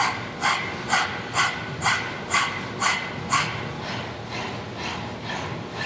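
A person pants rapidly with the tongue out, imitating a dog in a breathing exercise called dog breath: a steady run of about a dozen quick, breathy huffs, clear, growing softer toward the end.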